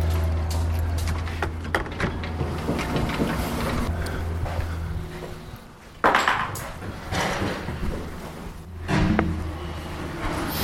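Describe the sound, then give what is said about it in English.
A heavy padlock is worked off the door of a workplace building with irregular metallic clanks and rattles, plus two louder scraping bursts, all over a steady low engine-like hum. “The heavy padlock is coming off the door.”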